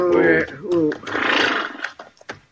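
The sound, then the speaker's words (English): A horse whinnies, a loud wavering neigh in two bursts, followed by a breathy snort and a few soft clicks or hoof taps, as riders stop to rest their horses in the shade of big rocks. “We'll rest the horses a minute, and then we'll head on back to the herd.”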